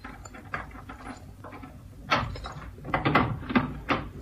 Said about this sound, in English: Listen, don't break down the door. Have you got your skeleton keys? You bet. Well, use them. Okay.